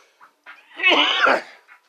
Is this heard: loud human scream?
no